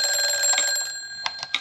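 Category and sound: household object, telephone ringing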